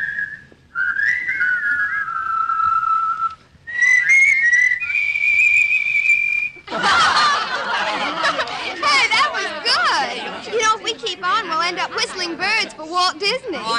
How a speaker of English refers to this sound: Whistling is okay, but it's what I call a limited sphere.